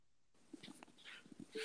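A dog whimpers softly, a few brief whiny yelps and snuffles over about a second and a half, with no talking.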